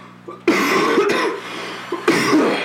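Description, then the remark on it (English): Two loud, harsh coughs right up against the microphone, the first starting a long rough burst and the second following about a second and a half later, with no talking. “She always comments about us coughing on the mic.”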